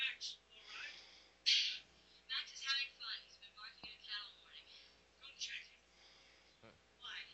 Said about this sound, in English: Hurry up, answer the damn phone.